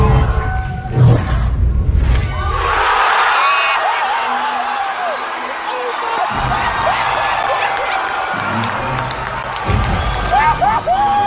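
A large indoor movie theater audience watching an Avengers film erupts in loud, sustained cheering, whooping and screaming as Captain America wields Thor's hammer for the first time, a dense roar of many voices with high-pitched shrieks rising and falling throughout, continuous.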